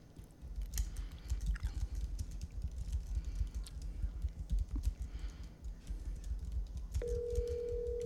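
A phone being dialed: rapid, irregular taps and clicks for several seconds, then a steady mid-pitched tone begins and holds to the end. No one speaks.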